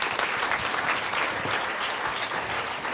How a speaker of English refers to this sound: Can I ask you two to both come to the front? Everyone give them a round of applause again.